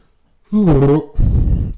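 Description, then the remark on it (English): A stifled yawn: a strained, wavering voiced tone held for about half a second, then cut off into a muffled, breathy exhale that trails away. Fairly loud, with no words spoken. “I was yawning. I was trying to like stop the yawn.”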